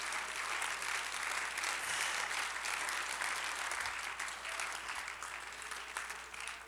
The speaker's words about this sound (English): Come on, clap your hands to the Lord today.